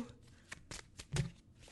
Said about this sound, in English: Actually, at the bottom of this deck, so I just shuffled and looked at the bottom, and we have the Queen of Pentacles.